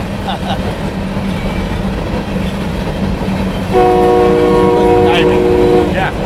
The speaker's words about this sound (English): There's the train.